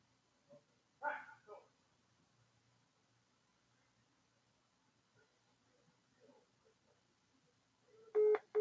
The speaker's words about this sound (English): getting a fucking phone call. Let's see what this is.